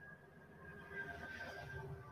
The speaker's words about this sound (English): Sorry, I took my window unit out, so the sound of the train is going to be more prevalent when we talk. That's okay. It goes by in like half a second.